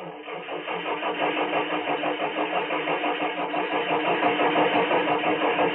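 The engine of a rented car cranks over and over in a fast, steady rhythm without catching, loud, continuing for several seconds with no voices.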